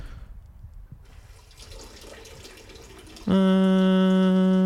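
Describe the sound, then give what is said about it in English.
A sink faucet sputters air bubbles and hisses irregularly for a few seconds as the water turns back on, then bursts into a loud, steady flow with a strong droning pipe hum that continues to the end. “Do you guys hear that? That's my sink right now.”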